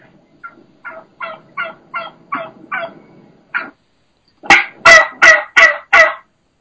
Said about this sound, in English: And in this situation, what I've got is there's a gobbler, obviously, and he's got a small group of hens. And there's one hen that's doing the high pitch, fast pace, that higher, that just regular, normal, plain yelp.